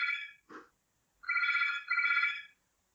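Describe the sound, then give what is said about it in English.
A telephone rings with a short chirp followed by two longer, steady electronic trills at a bright mid-high pitch, fairly loud, with no voices. “My secretary's got it.”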